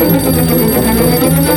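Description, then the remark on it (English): A telephone rings for an incoming call with a loud, continuous electronic trill, steady throughout, with no voices present. “Sir, the telephone.”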